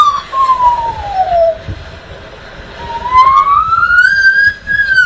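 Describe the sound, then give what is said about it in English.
A magpie imitates a siren with a smooth wailing tone that slides down, pauses, then climbs higher and holds, over a low rumbling background with no talking. “So it's a magpie. It's a magpie.”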